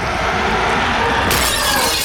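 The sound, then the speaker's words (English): Subway train windows shattering as a creature's flailing tentacles break them, in a loud, continuous burst of crashing glass and clattering debris, growing brighter and harsher partway through, with no voices. “Its flailing tentacles dent doors and break windows, open cracks in the metal walls of the train.”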